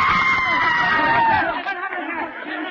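A woman in a theatre audience in Paris lets out a high, sustained scream as a great mass of glass and bronze comes hurtling down, the scream rising over the crowd's murmur for about a second and a half before fading into anxious chatter and hubbub.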